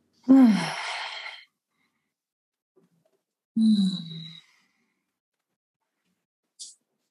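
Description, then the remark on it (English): Slow, deep breaths through the nose, fairly loud: two long, sighing exhales a few seconds apart, then a brief softer breath near the end, with no talking. “And going back to long and deep breathing through the nose.”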